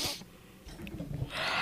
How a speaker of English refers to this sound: Hold on, I got to yawn.